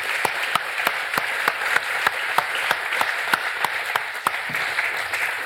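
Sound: applause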